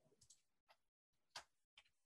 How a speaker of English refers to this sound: I believe it's at Dex Audio, and I am checking that now. Mind the typing noises in the background.